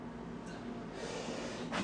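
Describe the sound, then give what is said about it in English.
A single quick sneeze bursts out near the end, breathy and snort-like, preceded by a faint sharp intake of air over a steady low hum. “Bless you.”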